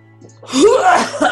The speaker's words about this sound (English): I just cough up a bunch of blood.